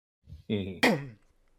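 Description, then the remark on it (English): A person clears their throat and gives a short, voiced cough, a brief rough burst, followed by quiet. “There's a sorry, coughing.”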